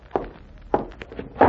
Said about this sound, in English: He and the Nazi walk across the yard to a little house that stands back a piece. The Nazi knocks on the door.